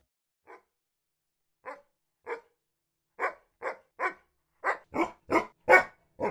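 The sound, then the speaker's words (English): A dog, Dioji, barks repeatedly in short, sharp bursts, starting with sparse single barks and quickening into a louder run of barks toward the end, with no voices present. “Okay, boy, I'm here. What is it?”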